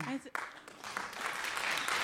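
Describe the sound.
A brief voice is quickly overtaken by a burst of steady applause from a small crowd, dense and fairly loud, sustained right to the end.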